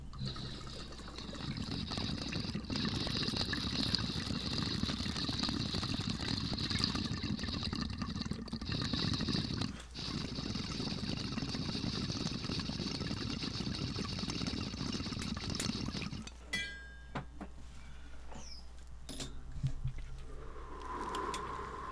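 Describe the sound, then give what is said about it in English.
Steady gurgling of water bubbling through a water rig as a dab of sugar stones from Pura Vida Cannabis Company is taken, continuous for about fifteen seconds with a brief break, then fading to quieter background noise and small clinks. “That was a real dab right there, everybody.”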